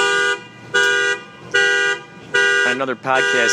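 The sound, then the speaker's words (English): A car alarm, set off by a passing motorcycle, blares with loud, evenly spaced honking bursts before switching to a rapid, warbling siren pattern. “Motorcycle set that one off.”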